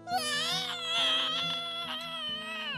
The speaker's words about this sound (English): Now, was that a heavy metal concert going on in there? It sounded like that wolf was screaming.